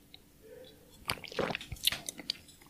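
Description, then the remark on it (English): Quiet wet sips of Knob Creek whiskey from a cup, with a few soft slurping and mouth-clicking sounds clustered over a second or two, then a small swallow; no one speaks. “Cheers to you, by the way. Let's do that. Let's drink on this one.”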